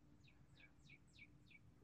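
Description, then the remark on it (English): A bird gives five quick, evenly spaced chirps, each a bright downward-sweeping note, repeating in a steady rhythm over a low background hum with no one talking. “Do you want a bird or do you want a baby?”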